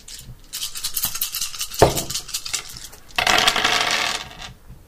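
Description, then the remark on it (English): Small hard dice are rolled on a table, rattling and clattering for several seconds, with a sharp click near the middle and a denser burst of tumbling toward the end, fairly loud, with no voices. “I would require some dice so that I may open the vault.”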